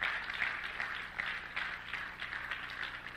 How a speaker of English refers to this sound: Come on and clap your hands for the reading of the word.